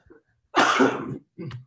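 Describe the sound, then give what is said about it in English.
A harsh, heavy cough: a small catch, then a long rasping hack and a shorter cough after it, with no talking. “Yeah, you're going to scare some fans with that cough, you know?”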